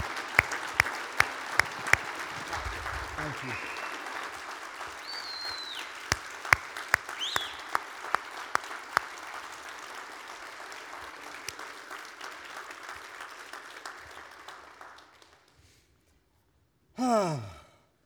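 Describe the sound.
Sustained applause from a large crowd, dense and steady for about fifteen seconds with a few scattered whoops, then fading out; a voice briefly speaks near the end.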